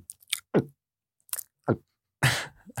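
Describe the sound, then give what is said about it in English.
Someone gulps down water in hurried swallows, three or four wet, throaty gulps separated by short pauses with small mouth and breath noises between them. “Maybe slow down on the water a little bit.”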